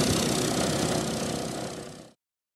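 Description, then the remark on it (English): A steady, loud engine drone of bomber aircraft of the 530th Bombardment Squadron idling and roaring as they prepare for takeoff at the north end of Runway 2 rumbles continuously for about two seconds, then cuts off abruptly into silence. No voices are heard. “Their engines roared to life as they prepared for takeoff, embarking on their mission to reach their target.”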